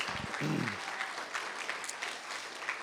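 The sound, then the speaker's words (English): Audience applause at a church service honoring the volunteer of the month fills the space, a dense wash of many hands clapping at steady volume, with a brief low voice sound near the start. “Can we give a big hand clap for”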